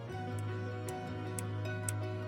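Steady clock ticks, about two per second, click crisply over a sustained, droning musical backdrop. No one speaks.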